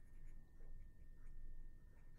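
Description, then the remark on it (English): Soft, steady, quiet scratching of a pencil writing down an answer on paper, with short strokes running continuously for a couple of seconds and no voices. “All right, I'm writing down that.”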